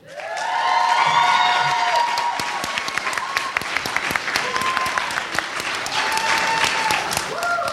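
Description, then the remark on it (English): An audience breaks into loud, sustained applause with dense clapping, mixed with cheering, whoops and shouted voices that rise and fall throughout; the audience applauds to pick a favorite comedy act, starting with Josh Gondelman's Quantum Leap. “So, pick a favorite with your applause, starting with Josh Gondelman, Quantum Leap.”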